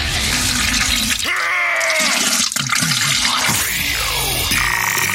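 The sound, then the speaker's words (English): A toilet flushes loudly, a steady rushing, gurgling swirl of water that fills the whole few seconds, with whistling tones from the refilling pipes rising through it. “This show is almost as enjoyable as hearing the sound of the toilet flush.”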